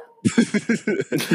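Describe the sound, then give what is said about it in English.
A dog barks in a quick run of about six short, sharp yaps, evenly spaced, with no talking over it. “My dog won't shut the fuck up.”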